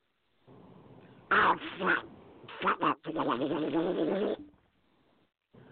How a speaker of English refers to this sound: That's a duck running for its life.